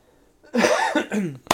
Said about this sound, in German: Ja, du hustest schon wieder. Früher hast du viel gehustet, also ich weiß nicht. Früher haben die Leute immer gesagt, warum der so viel hustet.